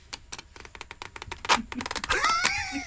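Close-up shuffling of a deck of playing cards: a run of quick, uneven papery snaps and flicks that builds toward the end, where a voice briefly joins in over them.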